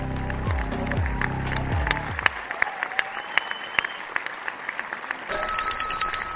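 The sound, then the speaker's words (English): An applause sound effect used by Vinny on the Brooklyn Cafe Show: a crowd claps in a dense, crackling burst that thins to scattered sharp claps, before a bright electronic ringing tone cuts in at the end. “I'm going to tell you, I like the applause that Vinny's using now better than anything else we've had before.”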